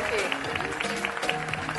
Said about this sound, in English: They're making fun of her here because she just stands there while everybody keeps clapping. And she's meant to kind of walk off, but she stands and waits until the very last person stops clapping, and then she turns around and walks away.